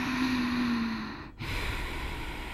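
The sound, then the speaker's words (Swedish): A slow, audible yoga breath with a hoarse, throaty rasp, drawn in and let out through a constricted throat, like a masked villain's breathing, with a brief pause between phases. “Så att då andas jag lite så här yoga-andning, kan man säga att jag gör.”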